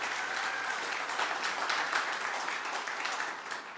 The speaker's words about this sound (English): Let's give a big round of applause to our staff and our pastors. They're awesome. Thank you, guys.